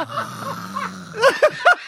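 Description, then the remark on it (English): A voice mimics snoring: a low rumbling inhale followed by three short, nasal snort-like bursts, fairly loud, with no other talk. “The snores.”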